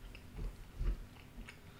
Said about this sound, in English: Oh, you chewing with your mouth closed? I appreciate it.